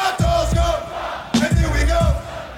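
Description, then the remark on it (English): A huge concert crowd roars loudly and continuously, with massed voices surging in rhythmic, chant-like shouts every half second or so, a dense wall of cheering that fills the whole space. “Listen to the crowd.”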